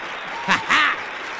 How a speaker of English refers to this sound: Where's my little applause button right here?